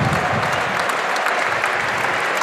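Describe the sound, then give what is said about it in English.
A large stadium crowd at the 2022 Betfred Challenge Cup final in N17, with the sun out, applauds steadily as the Wigan players take the knee: a dense, even wash of clapping that holds at a constant loud level throughout, with no clear voices rising above it. “Applause.”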